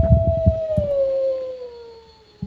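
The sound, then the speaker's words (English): A single long wolf howl from a Halloween backdrop decoration, slowly sliding downward in pitch and fading out, with a few low thumping knocks at the start and one near the end. “No, I'm not talking while a wolf is... That's the werewolf.”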